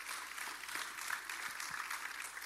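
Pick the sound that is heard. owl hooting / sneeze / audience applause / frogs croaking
audience applause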